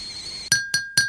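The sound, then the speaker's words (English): Three bright, ringing clinks of cups tapped together in a toast at tea time, evenly spaced, each with a short shimmering ring that fades quickly. No one speaks. “Now it's our favorite time. It's tea time. Tea time. Clink, clink.”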